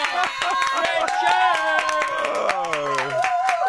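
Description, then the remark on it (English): A crowd claps steadily and loudly in a round of applause for Richard Curtis, mixed with whooping and cheering voices that ring out over the clapping throughout. “Control and round of applause for the legend that is.”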